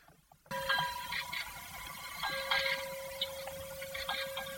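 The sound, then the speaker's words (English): The bell of HMS Hood, preserved and raised, is struck again and again in an irregular rhythm, its bright metallic ring sustaining between blows over a faint background hiss. No one speaks. “That's HMS Hood's bell being rung again.”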